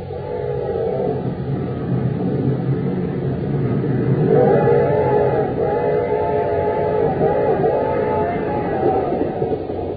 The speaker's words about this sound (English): We find them now on a fast express train roaring into Acme City.